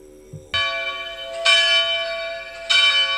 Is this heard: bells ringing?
yes